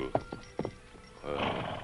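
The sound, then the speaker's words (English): A few scattered hoofbeats clop and slow to a halt as the Lone Ranger reins his horse Silver to a stop on a trail, then the horse lets out a loud, drawn-out whinny, with no one speaking. “When the masked rider of the plains reached the place where Blackie had stopped a short time before, he scrutinized the ground carefully, then reined to a stop.”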